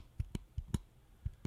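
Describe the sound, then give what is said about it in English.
A vape's fire button is clicked six times in quick pairs, pressed with a juice bottle while the vape is held in a rag, sharp little plastic clicks with quiet pauses between each pair and no one talking; the vape does not fire. “You can hear me clicking the button.”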